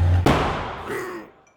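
A single loud gunshot cracks out sharply over a low rumble, then rings off in a long, fading echo that dies away after about a second.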